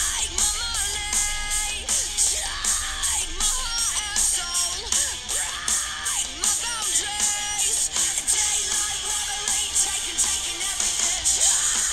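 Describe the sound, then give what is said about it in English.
Loud, driving punk rock with pounding drums and distorted guitars, carried by a female vocal that shifts between singing and raw, gritty screams. “I guess it's punky, but she does some like grindy screams every once in a while.”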